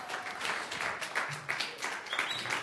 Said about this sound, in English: Kathy, can everybody give Kathy a big round of applause? Kathy made all these flannel graph boards.